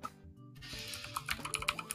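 Clacky typing on a mechanical keyboard, a quick irregular run of sharp key presses rising out of a steady background hiss, fairly loud, with no one talking.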